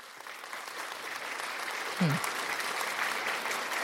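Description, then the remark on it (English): An applause sound effect: a steady wash of many hands clapping in a dense, continuous hiss that holds level throughout, with a brief low thump or whoop near the middle. “And you know I'm kidding about the round of applause, right? But it sounds cool. So you're going to hear it anyway.”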